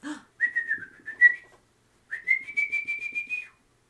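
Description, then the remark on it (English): A canary's song, imitated by whistling, for a canary on a windowsill outside a window: two high, steady warbling phrases with a quick fluttering pulse. A brief pause separates them, and the second runs longer and rises slightly. “You then see on the windowsill outside of one of the windows a bird, a canary.”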